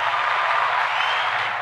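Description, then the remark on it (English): A dense wash of recorded crowd applause played as a sound effect for an intro, with no crowd actually present, many hands clapping at once in a steady, loud roar that holds evenly through the short burst with no voices on top. “Oh, the crowd. How's that for an intro?”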